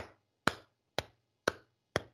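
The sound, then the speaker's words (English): Four slow, evenly spaced hand claps, about half a second apart, each a crisp sharp smack that fades quickly. A polite, unhurried golf clap with no voices. “That's my golf clap.”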